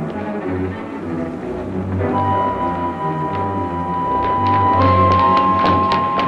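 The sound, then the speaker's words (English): Someone pounds repeatedly on a locked door, the heavy blows coming faster and louder toward the end, over a dense, droning musical background with a sustained tone. “We'll have to break it down, it's locked.”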